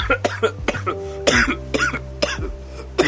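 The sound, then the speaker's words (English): A rapid series of harsh coughs, roughly seven or eight bursts in quick succession with short gaps, sounding strained and loud against a low background hum. “Were those cough fake? Nah, the last couple were not fake.”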